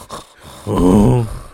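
Heavy breathing after eating spicy food: a short, soft breath is followed by a loud, drawn-out voiced exhale, a strained groan-like heavy breath lasting about half a second that wavers slightly in pitch before trailing off.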